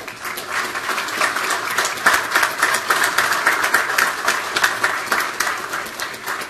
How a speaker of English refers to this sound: And I just need for you all to please give them a big round of applause.